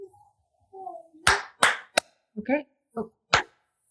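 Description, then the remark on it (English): Several sharp, loud hand claps ring out at uneven intervals, marking an edit point to be cut from a recording, with faint brief vocal sounds before and between them. “So just take a bit of a pause and I'll clap and we'll just cut out that part.”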